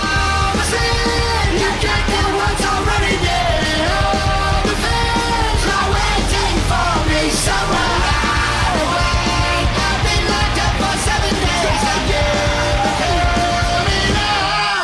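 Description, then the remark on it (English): A loud, dense metal track with shouted, yelled vocals over distorted guitars and pounding drums, the whole mix running full-tilt and constant from start to finish. “is also featured on a screaming metal blitz”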